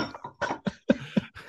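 A voice imitates a deep, guttural cough: a burst of several rough, throaty hacks in quick succession, fairly loud, with no other talking.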